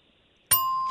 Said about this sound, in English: I'm sorry, there's a bell. I don't hear anything, sir.